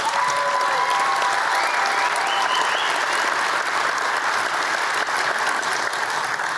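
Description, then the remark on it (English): An audience claps steadily throughout, a dense, loud wash of applause with no letup, and faint cheers or calls rising briefly above it near the start. “And those of you who are going to church tomorrow and didn't applaud, pray for me.”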